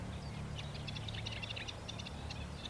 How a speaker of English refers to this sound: Oh, this is a reed warbler singing now. So it's a lovely, jaunty song. I always think nightingales are poets. They pause between phrases. The reed warbler sings in prose. He just has this lovely, jaunting, rattling song. Here he goes.